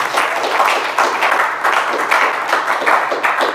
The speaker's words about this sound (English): Yeah, that was awesome. Let's round of applause.